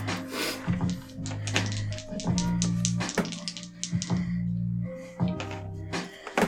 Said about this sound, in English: Okay. I don't like those two dice sound. Yep.